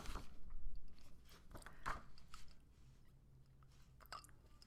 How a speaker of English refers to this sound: Do you hear me swallowing? I'm so sorry. I got lost in the moment. I'll try to edit it out.